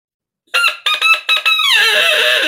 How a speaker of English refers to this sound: All of these have reeds, and they're very similar to what our duck calls are actually. But this one is made by Ludwig, and it's a rooster.